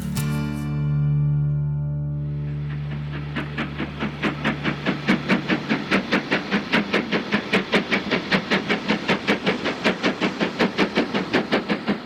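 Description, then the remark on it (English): The Jacobite steam train sounds a long, steady whistle, then begins chuffing in loud, regular bursts of hissing steam that quicken into a steady driving rhythm as it gets under way. “But in reality, the train is the Jacobite steam train”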